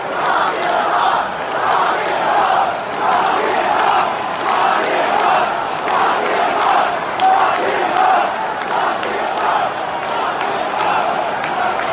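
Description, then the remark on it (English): A huge stadium crowd of Nationals fans roars continuously, booing President Trump mixed with rhythmic group chanting of "Lock him up" that swells and falls in regular pulses, loud and dense with no single voice standing out. “So everybody is talking about how President Trump was booed by Nationals fans last night. They also shouted, "Lock him up."”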